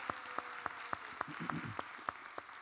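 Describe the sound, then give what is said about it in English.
Audience applause, a steady crowd patter with one set of sharp claps standing out in an even, quick rhythm. A brief murmur of voices rises partway through. “And we're clapping for you too, Sydney, if you're watching at Georgia, okay?”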